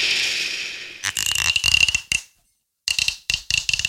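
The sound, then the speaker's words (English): A Lagavulin whisky bottle's cork squeaks as it twists open, loud, rasping, high-pitched squeals in two bursts separated by a brief silence, with a soft hiss at the start and no talking. “That was a good squeak, wasn't it?”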